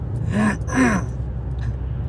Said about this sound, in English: Yeah, this I don't even know what's going on with this cough. It's just, it's weird. It's just lingering.